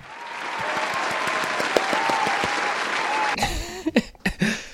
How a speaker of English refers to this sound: Round of applause.